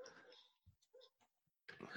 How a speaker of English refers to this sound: I thought it was dogs outside my house. Yeah, so that is a normality of where we live. There are dogs like literally right across behind us. They have like six dogs.